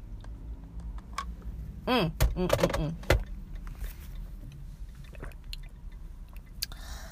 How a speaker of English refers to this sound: I'm drinking water.